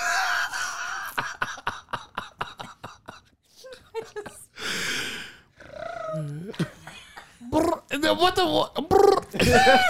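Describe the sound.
A woman mimics birds with her voice: a run of rapid clicking rattles, then breathy hissing, swooping warbled whistles and a burst of squeaky, chirping calls, loud and continuous.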